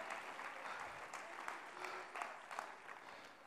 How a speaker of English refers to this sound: Oh, clap your hands unto the Lord now.